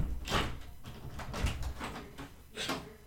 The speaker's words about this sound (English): Heard a door open. Assumed it was a front door.